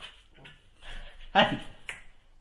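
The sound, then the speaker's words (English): A puppy lets out one loud, sharp yelp, surrounded by softer whining and fidgety noises across a couple of seconds. “because we can have 5 minutes without the puppy making a noise.”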